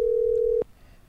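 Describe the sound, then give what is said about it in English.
A single steady electronic ringing tone of an outgoing telephone call, a pure mid-pitched hum lasting just over half a second before cutting off abruptly into quiet line noise. “I figure if you let it ring four times, they'll get to it.”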